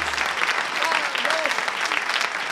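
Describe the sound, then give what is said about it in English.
An audience claps steadily in a dense, sustained round of applause, with a few faint whistles and calls rising over the noisy patter, welcoming a band onto a radio show. “Thank you, ladies and gentlemen, buckaroos and buckarettes, for that warm round of applause.”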